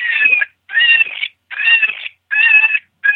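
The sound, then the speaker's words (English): An eastern cottontail rabbit gives a distress call: loud, high, wailing screams repeated five times in quick succession, each lasting about half a second with brief gaps between, without any talking. “This is eastern cottontail.”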